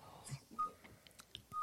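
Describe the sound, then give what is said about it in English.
The reversing alarm of a truck that has just delivered an oven gives two short, steady high-pitched beeps about a second apart, faint against soft breathy, rustling background noise. “Is there somebody backing up a dump truck by you?”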